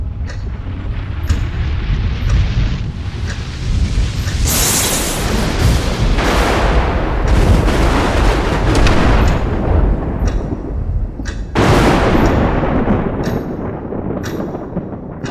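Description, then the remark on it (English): Loud video game lightning strikes crackle and boom as the player's lightning strikes down at a target that can't move, over a constant heavy rumble, with several sharp bright cracks standing out along the way. No one speaks. “And your lightning just starts striking down at this thing.”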